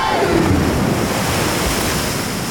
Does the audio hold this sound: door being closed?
no